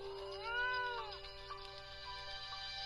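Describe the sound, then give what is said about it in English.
A single drawn-out cat meow with a rising then falling pitch, clear, trailing off after about a second over a faint steady background hum. “Later, Alice spotted a grinning cat ready to pounce on a rabbit.”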